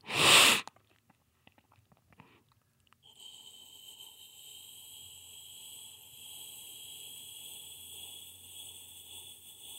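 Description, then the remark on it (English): A voice imitates distant crickets with breath: a sharp, loud breathy burst, then a soft, steady high-pitched hiss with a faint fluttering chirr that continues for several seconds without talk. “Yeah, and then maybe one more, a breath interpretation of crickets off in the distance.”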